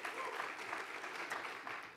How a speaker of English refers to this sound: Everybody, give them a big round of applause.